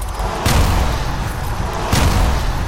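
Two sharp explosions, about a second and a half apart, burst out over a constant, heavy rumbling roar, each blast loud and booming with a quick crackling edge.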